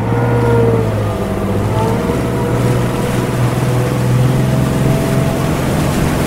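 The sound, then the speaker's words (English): A powerful engine roars loudly, a deep steady rumble with a throaty growl that holds its pitch for several seconds as it revs and takes off, with no voices. “Now we do the dramatic engine revving and taking off as we go to a quick little break here on the Opie Radio Podcast.”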